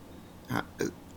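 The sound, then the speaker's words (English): Someone clears their throat in two short, rough, guttural bursts, the second following quickly after the first, with quiet before and after and no talking. “sorry, trying to clear my throat.”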